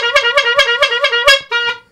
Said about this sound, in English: Are you honking a horn?